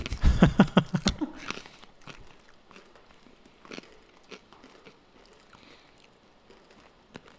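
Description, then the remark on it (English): Loud, rapid crunching of ranch corn nuts in a quick burst of hard bites, then quieter chewing with scattered crackles and occasional sharper crunches. No talking. “So corn nuts, ranch flavor.”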